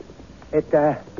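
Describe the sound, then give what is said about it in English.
A horse gives a brief, fairly loud neigh, a short tonal bleat followed by a longer whinny, against a quiet background. “It's just a horse. It's his horse.”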